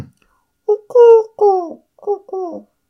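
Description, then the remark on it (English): A soft, hooting wood pigeon call: five low, breathy coos in a rhythmic phrase, two longer notes in the middle, then a brief pause before the last pair. “Love that sound of wood pigeon.”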